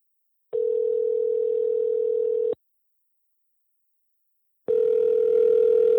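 telephone dial tone

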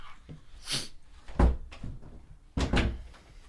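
door being opened

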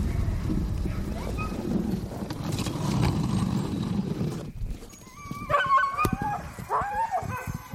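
excited sled dogs barking

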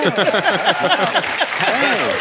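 audience applause

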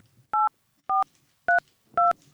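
telephone number being dialed

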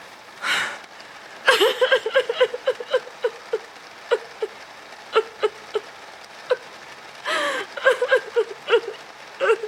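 heavy rain

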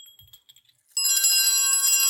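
small handbell ringing

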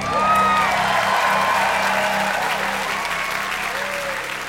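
studio audience applause

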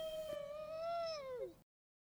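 wolf howling

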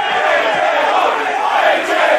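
crowd chanting a name

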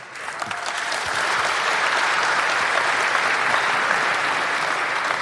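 audience clapping

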